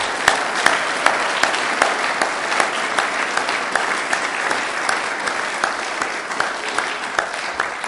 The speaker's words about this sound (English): but if we can give them all a big round of applause, thank you.